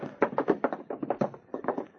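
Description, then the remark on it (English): A steady run of footsteps crosses the room as a man with his hands up walks over to a safe, about a dozen evenly paced steps, moderately loud, with a soft tapping quality and no voices over them. “Now then, mister, keep your hands up high and walk over to the safe.”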